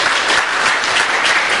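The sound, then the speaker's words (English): A church audience claps steadily in a dense, even wash of applause for God, loud and sustained with no voices rising above it. “So one more applause. Applause for God.”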